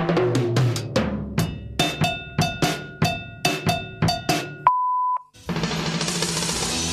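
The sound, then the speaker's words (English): A short drum pattern of steady, evenly spaced hits plays for several seconds, then stops for a single clear electronic beep, followed by a wash of noisy hiss. “Anyway, thanks for listening, and now I'll play a little bit of drums and then there'll be a beep and then you can leave your tup.”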